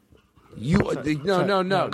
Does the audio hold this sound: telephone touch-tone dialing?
no